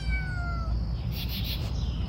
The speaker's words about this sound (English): Greg, that's your new cat. No. That's Greg's truck.